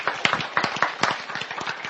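An audience claps together, a dense patter of many hands with sharper accented claps standing out irregularly, moderately loud and steady throughout, with no one speaking.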